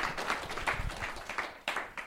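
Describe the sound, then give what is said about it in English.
A live audience in Bend, Oregon applauds, a dense, steady wash of many hands clapping for about two seconds, with a few sharper individual claps standing out toward the end. No one speaks. “Let's hear it for the crowd.”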